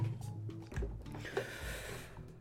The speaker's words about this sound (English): And then take a nice sip of water.